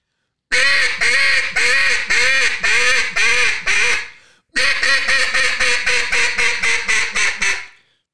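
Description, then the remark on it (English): A duck call blown loudly as a greeting call from top to bottom, in two rapid series of sharp, nasal quacks, each run descending in a steady rhythm, with no voices and a brief pause between the sequences. “But get a duck call that you don't accidentally overpower the reed, and just start wailing on that duck call, like a huge greeting call from the top to the bottom.”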